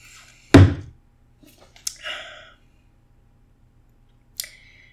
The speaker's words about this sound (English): I'm gonna sip my beer before I say it.